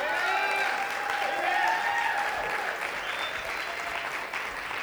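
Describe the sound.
An audience claps steadily and loudly for about five seconds, a dense continuous wash of applause with scattered cheering voices rising through it.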